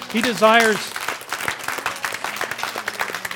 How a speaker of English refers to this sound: And let's just, I know we're not very expressive because we're kind of uptight folk here, but let's just give the Lord a little clap.